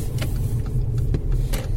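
A front-wheel-drive automatic car accelerating with a spin after a touch of the throttle, leaving the Mercedes-Benz World car park. Its engine is a steady, deep droning rumble broken by a few brief hissing bursts, with no voices.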